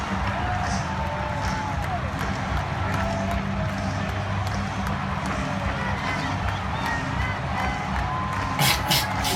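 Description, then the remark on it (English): A huge stadium crowd chants and roars after the Chicago Blackhawks won the Stanley Cup, with smoke in the middle of the crowd, in a dense, steady wall of voices at constant loudness, with a few whistles and a burst of sharp claps near the end. “Can we get to the chant already? Here it comes.”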